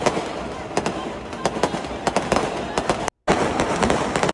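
Fireworks at a game explode in a rapid, irregular barrage of sharp cracks and pops over a steady rumbling wash, loud and continuous, with a brief gap of silence before the bursts resume.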